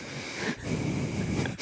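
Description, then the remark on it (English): Loud, wheezy breathing through the nose, with a steady hissing rasp that pauses briefly twice between breaths. No one speaks. “and said, can you hear how loud you're breathing?”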